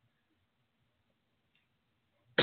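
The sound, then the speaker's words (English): Near silence, then a single loud, sharp cough bursts in right at the very end, cut off abruptly. “And excuse me there, I had a cough in my throat,”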